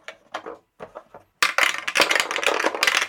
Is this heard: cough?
no